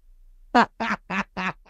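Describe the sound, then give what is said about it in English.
A turkey call sounds in a quick, even run of about five loud, nasal, honking notes, clear with no talking, the last note cut off at the end. “He started calling the turkeys again.”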